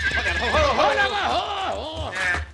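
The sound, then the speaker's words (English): A horse whinnies loudly, a long wavering neigh that rises and falls over a couple of seconds with a low rumble underneath. “For the last time, pull up your horse, Colfax.”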